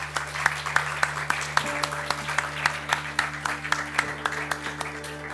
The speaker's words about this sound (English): And if you would like to join me in giving our panel a big round of applause. Thank you.